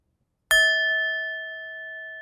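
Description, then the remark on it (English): A single bright bell is struck once, ringing out with a sharp metallic attack and a clear sustained tone that hangs steadily and fades only slightly. No voices accompany it. “I didn't like the sound of that bell, so we're going to give it another hit.”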